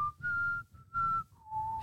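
A person whistles a short tune of a few sustained notes, pausing between phrases and dropping lower at the end, alone, with no talking.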